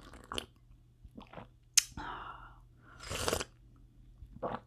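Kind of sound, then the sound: food or drink, sipping coffee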